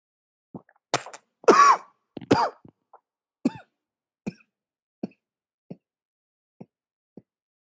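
A person coughs hard several times, with a few harsh, raspy bursts early on, then trails off into a series of shorter, quieter coughs and throat clearing spaced out over several seconds.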